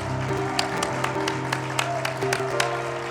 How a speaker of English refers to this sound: Somebody give the Lord a hand clap of praise as you're seated.